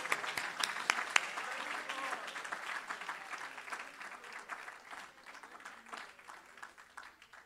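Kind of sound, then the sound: crowd, audience clapping hands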